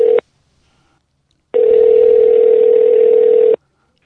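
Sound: telephone being dialed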